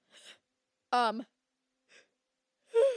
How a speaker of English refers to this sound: Sorry. I suddenly got really bored. No, I'm kidding. Because I was yawning.